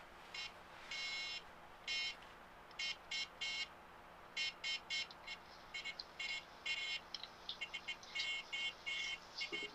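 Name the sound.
morse code beeping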